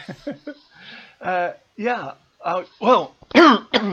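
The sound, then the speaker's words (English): A fairly loud run of throat clearing and coughing, with several short, rough, voiced bursts spaced unevenly and brief pauses between them. “sorry, I just cut the cough out.”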